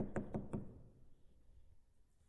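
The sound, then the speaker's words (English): Three quick, sharp knocks in an even rhythm, fairly loud, mimicking someone rapping on a door, followed by a low murmur of background noise. “listen, I got a knock on the door yesterday.”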